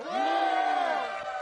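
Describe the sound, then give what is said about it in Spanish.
A crowd of many voices shouts loudly together in one sustained, roaring cry that holds steady for over a second before tapering slightly at the end. “Y gritaron a gran voz.”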